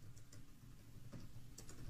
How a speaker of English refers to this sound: I'm typing.